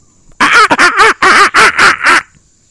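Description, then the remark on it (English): A person vocally imitates a baboon bark: a loud, rapid burst of about seven harsh, nasal, quacking calls over roughly two seconds, then silence. “That's our bark. That's our baboon sound now.”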